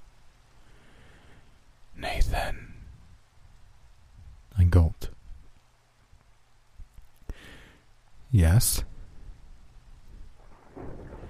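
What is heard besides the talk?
rain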